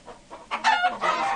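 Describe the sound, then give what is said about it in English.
A chicken in a video game squawks and clucks in a quick burst of two or three loud calls, with a softer cluck just before and no voices. “Hit a chicken.”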